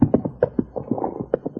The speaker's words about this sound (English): Listen. You hear what I hear? I hear a horse, if that's what you mean. Riding fast. Yeah, too fast.